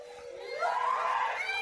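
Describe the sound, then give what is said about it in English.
A woman's high, strained scream rises in pitch and holds for over a second, loud and shrill, with an angry edge and no other voices. “Oh, that's the lady screaming? That's the lady.”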